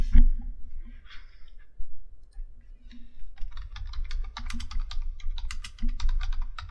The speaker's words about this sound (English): Are you looking it up? Yeah, I'm looking it up. I just heard light typing, and I'm just like, oh, you fucker. I'm looking it up to see if someone's done it already.